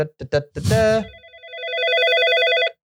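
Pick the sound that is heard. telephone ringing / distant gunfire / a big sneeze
telephone ringing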